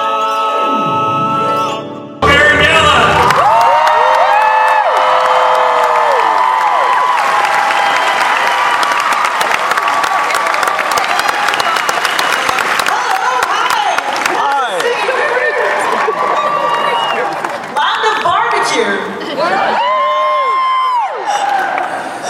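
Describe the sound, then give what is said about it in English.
A large crowd at Planet Comic Con, the biggest it has ever assembled in one room, bursts into loud, sustained applause and cheering after a brief lead-in, with high whoops and shouted voices rising over dense clapping for about twenty seconds. “Start off by saying this is the biggest crowd Planet Comic Con has ever assembled in one room.”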